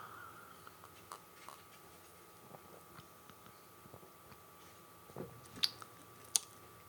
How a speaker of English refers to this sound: I'm about to give it a sip.